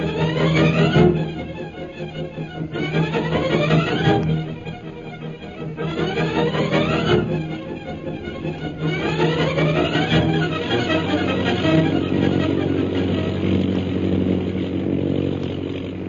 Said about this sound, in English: After landing at Hong Kong to refuel, Jungle Jim's plane continues on its journey toward Mandalay. As we pick it up now, our friends are flying over mountainous jungle country.